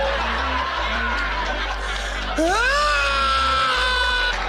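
A loud, sustained yell bursts out about halfway through, rising in pitch and holding strongly to the end, following a stretch of noisy, chattering background voices.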